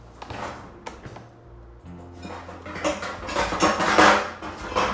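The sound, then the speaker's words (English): Clattering of metal pots and pans as someone rummages for another pan to saute mushrooms, with scattered clanks and knocks that grow busier and louder toward the end, no talking. “Let me look for another pan real quick.”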